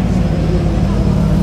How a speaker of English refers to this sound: TGM's doing a little test for the engine here on their Aston Martin.